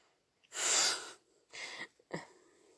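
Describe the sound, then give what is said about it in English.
Three harsh, breathy coughs in a row, the first loudest and longest, followed by two shorter bursts, the last with a rougher, throaty voiced edge. No talking. “I don't like coughed.”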